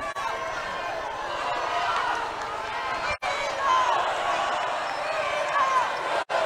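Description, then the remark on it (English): Ascension Catholic fans at a volleyball match cheer and chant steadily in a cheer-off during the second set, a dense wash of many voices that holds loud throughout, with two brief drops in the noise. “Now we have a little cheer off as the Ascension Catholic faithful really getting into it here, as they lead it 15-12 here in set number two.”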